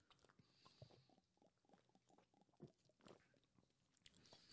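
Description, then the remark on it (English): Someone takes a long pull of beer, a run of wet gulping and swallowing sounds repeating in a steady rhythm for several seconds, with no talking. “Wait, I didn't do the big gulp.”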